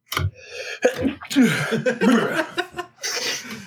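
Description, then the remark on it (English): A sudden sneeze bursts out, followed by a few seconds of breathy, voiced sounds that resemble laughter or chuckling. “At a sneeze.”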